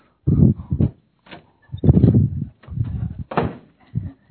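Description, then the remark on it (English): A series of dull thumps and knocks as someone runs into a door while going to fetch something, with several irregular impacts and a brief rattle between them, fairly loud, with no talking. “I ran into the door.”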